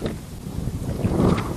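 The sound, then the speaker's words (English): A small boat on the water: a steady low rumble with rushing wind and water noise, continuous, with no voices. “So here we are in our little boat.”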